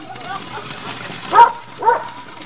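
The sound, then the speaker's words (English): A dog barks twice, two sharp, fairly loud barks about half a second apart, reacting to a firework, after a stretch of faint murmuring voices and background noise. “The dog's leaping five, six feet in the air. Dog's freaking out over this firework.”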